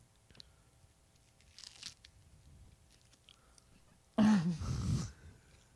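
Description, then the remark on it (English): A single loud, crunchy bite and chew near the microphone, a burst of crackling lasting about a second after some quiet small rustles and mouth sounds, with no talking. “Anyways, listen to this chew I'm about to do.”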